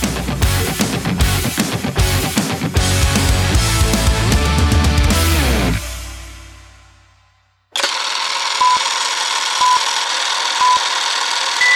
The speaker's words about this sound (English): What is that? That's a jet. Okay. Oh, what is that? That's cool looking. What the hell is that? Okay, I'm a rattle car. Loud. In the Navy.